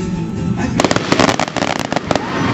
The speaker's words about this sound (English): No 4th of July celebration would be complete without fireworks.